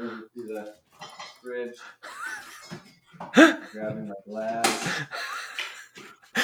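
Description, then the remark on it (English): A glass is picked up with a couple of sharp, bright clinks, heard under and between people talking. “Grabbing my glass.”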